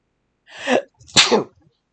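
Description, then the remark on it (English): A single loud sneeze: a short sharp intake followed by a bursting, breathy expulsion, with no talking around it. “Well, can I please not sneeze in the middle of recording?”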